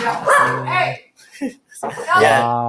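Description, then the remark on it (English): Dogs bark and yelp loudly in two drawn-out bursts, with a brief quieter gap and a short sharp yip between them. “What was happening there? The dogs are being dogs.”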